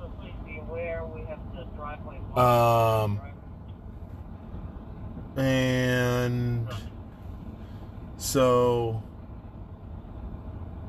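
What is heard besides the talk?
truck being moved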